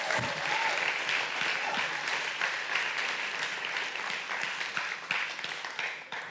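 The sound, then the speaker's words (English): A church audience applauds their returning worship director steadily for about six seconds, a dense, even wash of many hands clapping at a fairly loud, constant level that tapers slightly at the end. “Would you give him a round of applause and just thank him for being back?”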